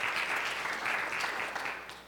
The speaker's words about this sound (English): Can you give the Lord a hand clap of praise tonight?